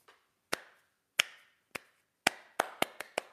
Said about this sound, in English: Slow clap.